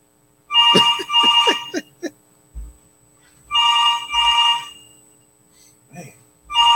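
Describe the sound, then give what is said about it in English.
A phone rings twice on the line, two bright warbling ring bursts separated by a pause, heard clearly as a caller waits for someone to answer on a call to Ben Simmons. “They better pick up the phone,”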